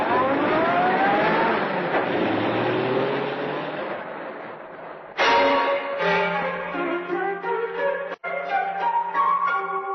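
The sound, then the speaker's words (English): A car engine revs and pulls away, its roar rising in pitch and gradually fading over several seconds before cutting off abruptly as music begins. “Car drives away.”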